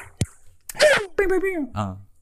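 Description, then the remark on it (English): Two sharp hand claps ring out in quick succession, two claps on Ric Flair, followed right away by a voice letting out loud, drawn-out whooping yells. “Can I get 2 claps on Ric Flair?”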